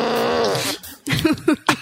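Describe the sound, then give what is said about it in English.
A loud, drawn-out buzzing fart with a wavering pitch lasts nearly a second, then after a brief pause comes a string of three or four short, sputtering bursts, all clear. “As soon as she hears the fart, she tries to go back to the high art.”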